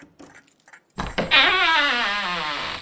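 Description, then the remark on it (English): A door creaks open in one long, wavering groan that slowly slides down in pitch, starting with a sharp clunk and staying loud for nearly two seconds after a few quiet rustles. “Did I just shush a door?”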